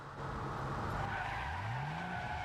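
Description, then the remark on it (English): A car's tires skid with a loud, sustained screech as the engine rumbles underneath, close by and lasting a couple of seconds before it comes to a stop, with no voices. “Does Zane know she stole his car?”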